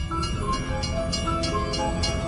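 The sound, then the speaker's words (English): A train comes along the tracks with a steady low roar and evenly spaced metallic clacks of wheels over the rails, loud, with a faint tonal whine above. “Now he's about to pull into the train tracks while the train's coming and just get blasted by the train.”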